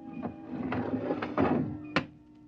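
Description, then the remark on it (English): A series of heavy mechanical clunks as a red airlock lever is pulled and the air gushes out, then a metal airlock door thunks shut. A steady low machine hum runs underneath, ending with one sharp final thud. No voices. “I pulled the red lever, and there was a slight waver as the air gushed out.”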